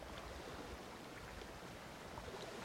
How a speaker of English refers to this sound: The sounds of the water lapping along the shoreline on the island of Corfu. Let the sounds take you away